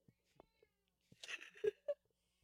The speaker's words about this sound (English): Oh, yeah, the cat's yelling.